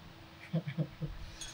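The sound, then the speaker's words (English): A few quick, light clinks of glasses of Prosecco tapping together in a toast to Joe Biden and Kamala Harris, followed by a brief high ringing tone that fades out. The sounds are fairly soft, with no talking over them. “So cheers to Joe Biden and Kamala Harris.”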